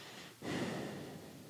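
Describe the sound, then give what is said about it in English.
A person breathing through the nose directly into the cardioid membrane of a microphone: a breathy rush of air, a brief dip, then a sustained loud exhale with snort-like texture, no talking. “… right now is putting his nose to the microphone. And breathing directly into the cardioid membrane.”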